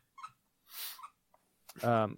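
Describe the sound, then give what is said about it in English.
A dog squeaks its squeaky toy a few times while on a bed: short, breathy squeaks at first, then a longer, louder squeal at the end, with no one talking. “Do you hear that squeaking? Yes. Yeah, what is that? It's his dog.”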